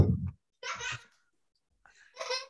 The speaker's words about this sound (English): Oh, no, please leave that giggle. That giggle from your children is the best part of the podcast. Please do leave that.